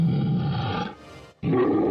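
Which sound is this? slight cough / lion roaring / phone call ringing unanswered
lion roaring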